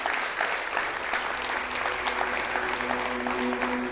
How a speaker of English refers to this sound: Can we give God a hand clap of praise right there?